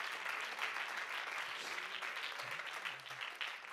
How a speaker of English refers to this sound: Why don't you clap your hands and give him praise unto the Lord?